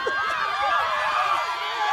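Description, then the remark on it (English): A crowd screams at match point, a dense wall of overlapping high-pitched shrieks and yells that stays loud and steady for the full two seconds, with no distinct words. “They're screaming their brains out.”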